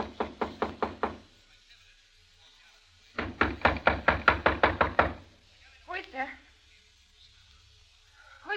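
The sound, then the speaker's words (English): Two loud bursts of rapid knocking on the door of room 212 at a small hotel called The Dynasty: about six quick raps, a pause, then a longer run of ten or so, followed by a brief voice. “A few seconds later, I knocked on the door.”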